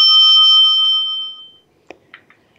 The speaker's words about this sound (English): Did we get the bell on that?